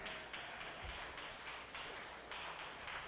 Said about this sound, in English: Can I get about three people over here and about four people over here to start to give the Lord a hand clap of praise?